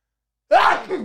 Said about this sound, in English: Sorry, sneeze time.